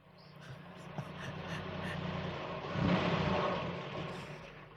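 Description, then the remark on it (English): A car engine turns over and revs, swelling to a louder roar around the middle before easing as the mayor's car pulls away to drive to the post office, with low rumbling harmonics throughout and no talking. “We can get back in the mayor's car and we can make our way to the post office.”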